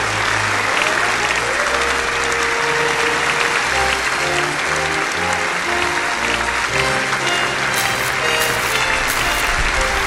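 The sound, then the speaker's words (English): An audience claps steadily for about ten seconds, a dense, loud wash of hand claps with musical tones sounding softly underneath. “Clap your hands, everyone.”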